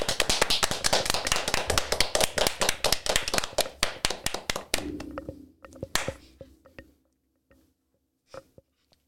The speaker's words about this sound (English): Our special guest. Round of applause.